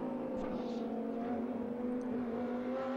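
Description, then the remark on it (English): Lamborghini race car engines, including the number 15 Gallardo, roar steadily on track as one car passes two others, a loud, sustained drone with strong engine harmonics holding for about three seconds, no voices audible. “Lewis makes his way past both of those cars.”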